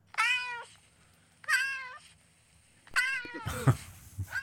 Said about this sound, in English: What is that? It's a kitten. Yeah, why do you have a cat in estrus so quickly? Because my 2-year-old likes to push all the animal sound buttons.